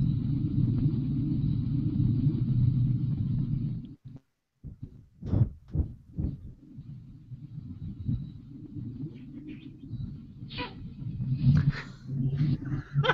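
A bus's engine rumbles low and steady as it arrives, cuts out briefly, then returns with a few sharp hisses and clunks before settling back into a deep idle.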